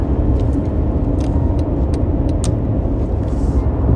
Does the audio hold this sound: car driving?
yes